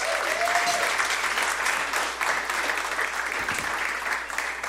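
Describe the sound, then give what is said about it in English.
A crowd applauds for a group of kids, with dense, sustained clapping that stays loud and even for the whole stretch, a faint voice or whistle briefly rising over it early on. “Can we give it up for these kids?”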